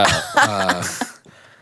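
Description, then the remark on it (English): A loud, throaty, voiced cough, not from sickness, breaking into a few sharp bursts over about a second before trailing off into quieter breathy noise. No one speaks. “That wasn't a weird sickness cough.”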